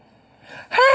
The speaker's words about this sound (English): I yawn, you yawn. Being tired is contagious.